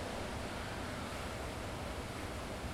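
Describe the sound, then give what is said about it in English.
Gentle ocean surf washing steadily onto the shore on a morning in Burley, getting calmer after being rough, a continuous soft hiss of water with no distinct crashes, even and unbroken throughout, with no voices. “And so hopefully you can hear that it's getting a little calmer now”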